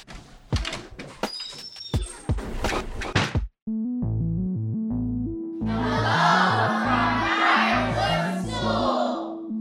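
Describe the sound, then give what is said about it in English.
A door is worked open with a series of clunks and rattles, then cuts off as upbeat music starts and a swelling crowd-like roar joins in. “Do you want to say that again and then open the door?”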